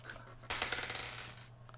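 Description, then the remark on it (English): Dice, rolled by a player during a tabletop game while listening to another player talk, clatter and tumble across a hard tabletop for about a second, a quick burst of rattling clicks that fades out, with no talking. “I was just rolling it as I was listening to you talk.”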